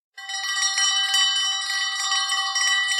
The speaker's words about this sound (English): And then the other animal-related thing I have to show you is an elephant bell.